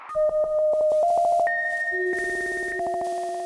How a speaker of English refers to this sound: Welcome to a special exhibition recording of …, recorded live at the Philadelphia Museum of Art. The music you are about to listen to was generated by four living plants. On lead synthesizer, a philodendron.